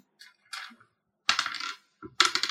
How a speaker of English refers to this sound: Okay. Roll a d20.